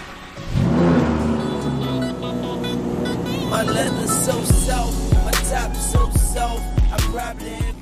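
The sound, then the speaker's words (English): A black Lamborghini Murcielago engine cranks and roars to life, settling into a loud, rumbling idle before a series of sharp throttle blips rev it up and back down several times. “The car that TJ bought was a black Lamborghini Murcielago.”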